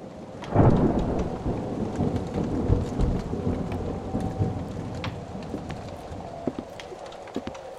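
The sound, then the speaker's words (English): A heavy thunderstorm: a deep thunder rumble swells early and rolls on beneath steady, dense rainfall, with scattered sharp drips and patters. “This storm really is not letting up, is it?”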